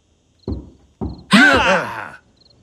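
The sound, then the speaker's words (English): Two dull, evenly spaced knocks from trick-or-treaters land on a door on Halloween, followed right after by a loud, drawn-out vocal groan that wavers in pitch before fading. “Someone's at the door.”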